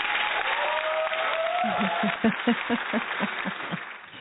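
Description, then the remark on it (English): A steady burst of audience applause for a conservative guest fills the whole clip, dense and loud, with rhythmic hooting cheers pulsing through the middle before the clapping tapers slightly at the end. “Audience, a big round of applause for a fabulous freedom-fighting and country-loving conservative patriot.”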